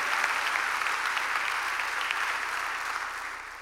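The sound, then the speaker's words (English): An audience at a church service claps together in a dense, sustained burst of applause in faith for a healing miracle, many hands overlapping into a steady crackling wash that holds loud and then begins to taper off near the end. “Come on, clap with me right there.”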